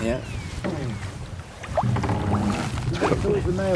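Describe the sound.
A person rows a boat across the calm water of a loch, oars dipping and splashing in a steady rhythm, with soft wind and faint voices or birdsong in the background.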